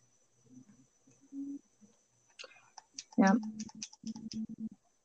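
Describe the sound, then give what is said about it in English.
Scattered bursts of computer keyboard typing, quick clicky taps coming in short irregular runs, mixed with low, muffled voices talking nearby. “He thinks we're so dumb, like we can't hear what they're typing.”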